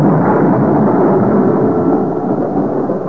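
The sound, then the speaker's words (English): A loud, continuous roll of thunder rumbles through a storm, holding steady for a few seconds without breaking, dense, with no voices. “His chance came a couple of nights later. The night of the storm. Such a storm.”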